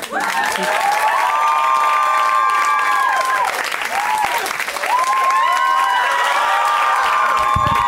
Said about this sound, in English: So I will do an impression of men doing stand-up. All I need from you is a huge round of applause, as you would for a man.